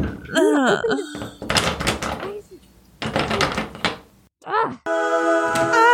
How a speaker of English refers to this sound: Luna, open the door.